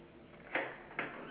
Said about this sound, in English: I'm going to have to answer the door.